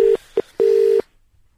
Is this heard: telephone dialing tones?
yes